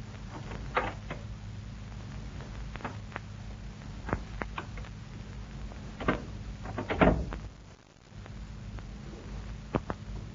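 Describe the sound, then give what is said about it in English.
Quiet, scattered metallic clicks and small rattles, like a door knob being tried and turned, with a brief louder jiggle near the end, over a steady low hum and no talking. “Somebody's at the door. He's trying the knob.”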